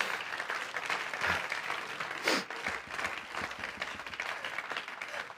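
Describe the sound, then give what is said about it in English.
A church audience claps their hands in a dense, steady wash of applause with a brief swell near the middle, continuous and fairly loud throughout. “I wish you'd clap your hands right now.”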